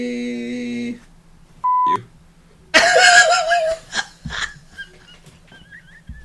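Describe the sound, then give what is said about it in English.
A short, flat censor bleep tone cuts in over the word "Zimbabwe", sitting steady and clear for a fraction of a second, then gives way to wheezy, breathy laughter and scattered noises. “I mess up and I bleep out the Zimbabwe part.”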